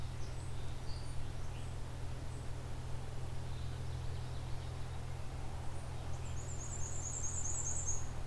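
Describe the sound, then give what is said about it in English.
A black-and-white warbler sings a fast version of its song: a thin, high, rapidly repeated series of squeaky notes lasting about two seconds, over a steady low rumble, with no talking. “Okay, there's a fast version of the black and white warbler song.”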